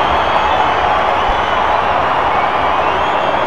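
A baseball crowd cheers loudly and steadily as the Detroit Tigers get a man on first base, a dense, unbroken roar of many voices with no single voice standing out and no pauses.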